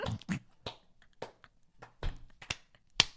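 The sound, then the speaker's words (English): A single person claps their hands about eight or nine times in a slow, uneven rhythm, each clap a sharp, crisp smack with quiet gaps between and no voices. “Guess I'm just fucking sitting here clapping for nothing.”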